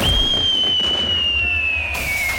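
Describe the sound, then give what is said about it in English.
Bonfire Night fireworks: a single long, piercing whistle that holds steady and slowly drops in pitch, opening with a low thump and a rumbling backdrop, loud. “Remember the 5th of November with an award-winning fireworks musical display.”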